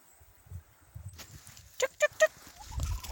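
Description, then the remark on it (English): A horse snorts three times in quick succession, short breathy bursts, amid quiet rustling on a farm and a low rumble toward the end. “But the cat's purring engines are always soothing, as are the horses snorting.”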